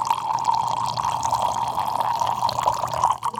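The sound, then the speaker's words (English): Wine poured Basque-style from a height through a small spout fitted in the bottle: a steady, unbroken splashing stream, fairly loud, running for several seconds with no voices. “It's like, it's just a spout that helps. Like it just, you gotta do it for it.”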